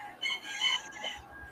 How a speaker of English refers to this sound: I just had a rooster. I think a rooster got out in my backyard. Hey, is it 5 a.m. again?